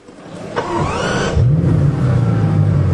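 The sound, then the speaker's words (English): A Bugatti Chiron Pure Sport engine cranks and fires up, a brief whirring starter followed by a rising rev that settles into a steady, deep idle rumble, fairly loud, with no voices. “And let's start it right up.”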